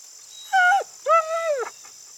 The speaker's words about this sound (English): Look, they got Max now. Good doggy. Come here, jump in. Sweet doggy, don't be scared. We won't hurt you.